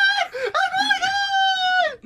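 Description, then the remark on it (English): A man screams loudly in one long, strained, high-pitched wail that holds for nearly two seconds, raw, with no other sounds around it. “I've never heard you scream that loud before.”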